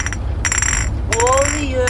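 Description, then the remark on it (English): Three glass Coca-Cola bottles held on someone's fingers clink together in a few bright, ringing strikes, each bell-like tone hanging briefly before the next, with a low rumble underneath. “And he's clinking three Coca-Cola bottles on his fingers together.”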